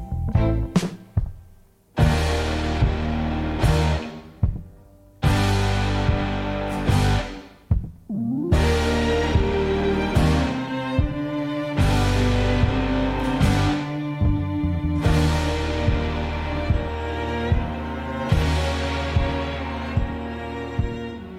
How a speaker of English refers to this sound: This is …, released on …, written by …, and from the new … album, ….